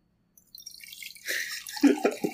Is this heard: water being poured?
yes